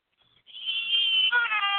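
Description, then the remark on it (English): A voice imitates a pig squealing: one loud, shrill, sustained squeal lasting over a second, rising in intensity and breaking into a strained, wavering tone near the end, heard alone. “Does he have a real pig over there?”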